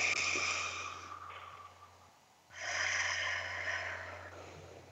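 A slow breath drawn in through the nose, expanding the belly, a brief pause, then a long airy exhale pushed out through the mouth as if through a straw, soft and steady with no talking.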